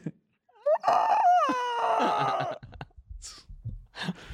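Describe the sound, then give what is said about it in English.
A person loudly imitates a squawking bird after winning a slot machine jackpot, a shrill, wavering cry lasting about two seconds, followed by quieter breathy sounds and brief murmurs. “When you hit a slot and you make a bird sound, you'd be like, yeah.”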